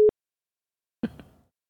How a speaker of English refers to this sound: That when you hear that beep, that little beep. Oh, yeah, that's a dead end jail. That's the they hung up beep.